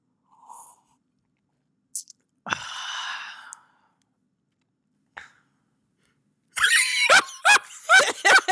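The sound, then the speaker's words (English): A wet slurp of someone sipping wine, with faint clicks of the lips around it, then a run of loud breathy mouth sounds and murmurs after tasting. “First sip, guys. Can you hear it?”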